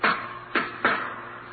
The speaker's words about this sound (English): Then the knock on the locked door of the jury room.